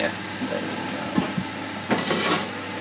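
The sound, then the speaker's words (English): A roasting pan of butternut squash, seasoned with salt, pepper and chili, being shaken in a kitchen: a few knocks and scrapes, then a louder hissing, rattling burst of sizzle toward the end over a steady kitchen hum. “Roasted butternut squash. You giving them a shake?”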